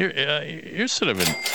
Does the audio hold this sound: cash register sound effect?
yes